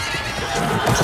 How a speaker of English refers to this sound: So now you might have an idea of who pulled that pin that was keeping the horses bridled. majestic horses, hooves. Uh-oh, here comes the pin. All right, the horses are running wild through the streets.